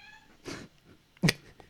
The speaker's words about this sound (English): there are a lot of random cat meows throughout the whole scene